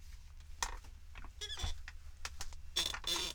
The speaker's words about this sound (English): That chair is squeaky, fam.